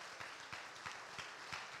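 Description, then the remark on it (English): A church audience clapping hands to thank God after a prayer at a Wednesday night service, a dense steady patter of applause with a few louder rhythmic claps standing out at regular intervals, fairly quiet overall and without voices. “Clap your hands and thank God for his word.”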